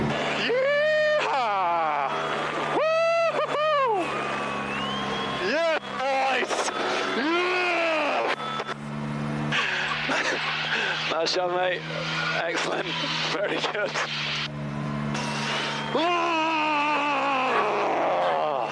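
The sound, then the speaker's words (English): A racing driver lets out a series of loud, drawn-out roars in imitation of a grizzly bear over a crackly in-car radio link after finishing third in the Austrian Grand Prix, with a steady engine drone underneath and another voice briefly speaking between them. “Just a bit of grizzly bear work. I don't think a honey badger makes those noises.”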